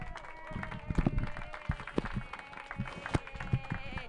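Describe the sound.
An audience applauds with dense, irregular claps that hold at a moderate level, mixed with a faint murmur of voices and cheering underneath.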